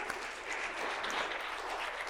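An audience at a church service claps steadily for the pastor, a dense wash of many hands with no distinct individual claps, holding an even, moderately loud level for a couple of seconds without any voices.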